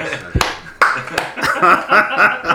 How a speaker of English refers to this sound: Give that man the clap he so richly deserves. Slow clap.